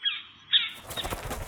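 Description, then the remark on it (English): A bird's wings beat in a quick flurry of soft, fluttering whooshes, starting with a couple of chirpy accents and building into a dense flapping burst as it lands. “I've got a special guest today from the jungle's very own treetops. The bird who knocks.”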